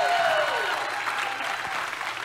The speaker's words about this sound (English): If you love Jesus, give him a round of applause in this house.